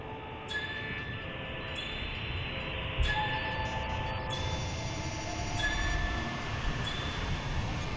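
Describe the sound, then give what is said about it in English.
A train rumbles steadily past southwest of the Highland Lines Railway Junction, with metallic wheel squeals and high ringing tones sliding over the continuous low roar of railway cars; no one speaks. “Southwest of the Highland Lines Railway Junction.”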